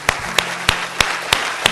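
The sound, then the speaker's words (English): A church audience claps in steady unison to praise God, six sharp, evenly spaced claps about a third of a second apart, over a low, constant background hum with no voices. “Let's give them a hand and let's praise God, sir.”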